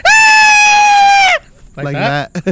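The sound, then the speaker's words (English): A voice imitates a high, drowsy scream, holding one loud, steady pitch for over a second before it sags. A shorter wavering vocal sound and two quick bursts follow. “But it was more like a fucking high drowsy kind of scream.”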